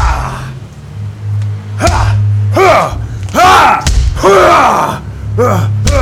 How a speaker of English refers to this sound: A clamor resounds throughout the vaults, the flip-flip-flipping of flying bat-winged toads, the cackling of the fool, the argle-bargle of goblins, the audible thumps of Wolf crushing the rabble with the witch's hammer.